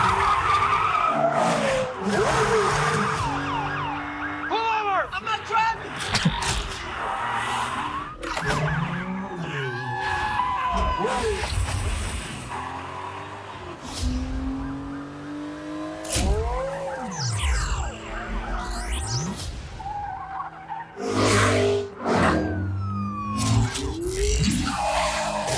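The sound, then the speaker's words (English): A loud, continuous movie car chase in which the Autobot Mirage runs from the police: engines roaring and revving, tires screeching in repeated skids, and wailing police sirens rising and falling over the busy action. “Like with Mirage, you know, he has that, they have a great car chase in here where he's running from the police.”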